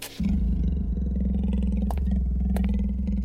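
Wolves growl deep and low, a loud, rumbling snarl that starts abruptly and holds steadily for a few seconds, with no talking over it.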